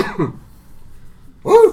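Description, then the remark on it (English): A person's voice imitates a dog barking, giving two short, gruff woofs separated by a pause of about a second, the second one louder and more tonal. “Well, we have bark. We have the one and two. Once for yes and twice once for no.”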